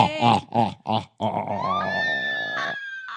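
A few short, harsh vocal bursts lead into a long, loud sustained scream whose pitch climbs and holds high before cutting off abruptly.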